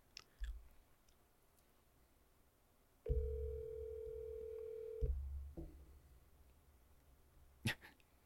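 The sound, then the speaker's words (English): A single steady electronic ringback tone from a phone call sounds for about two seconds, clear and fairly loud, with a few soft clicks and handling noises before and after it. “Oh, it's calling. It's actually ringing.”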